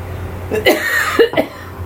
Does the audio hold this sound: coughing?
yes